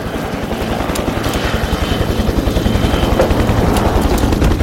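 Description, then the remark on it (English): A helicopter, Defense One, lifts off in rainy weather, its rotor chopping in a fast, steady low-pitched thump, its loud engine whine rising slightly as it lifts, with a broad rushing roar above. “Pilot, this rainy weather gonna bother you? No, sir.”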